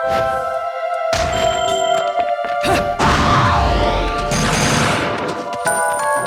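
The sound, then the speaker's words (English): Video game combat effects from a torture attack on an enemy Bayonetta: a chain whip lashes and cracks as she is whipped onto a stone horse and pulled to pieces, followed by heavy smashing thuds and crashing impacts, loud, over a steady droning, tonal game soundtrack, with no talking. “We torture attack her by whipping her up onto the stone horse. And then pulling her to pieces with our chain whip.”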